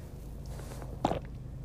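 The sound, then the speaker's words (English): A single gulp of a big sip of water from a water bottle being swallowed, a brief wet mouth sound over a low steady background hum, with no talking; recorded while sitting in a car. “Could you hear me swallow? Because I did.”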